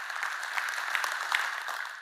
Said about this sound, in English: He's worth a clap for that as well.